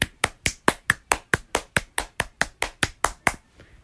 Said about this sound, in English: Okay, I think that's enough clapping. You can stop now.